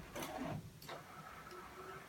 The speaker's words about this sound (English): And then printer action over here. You guys getting a fax?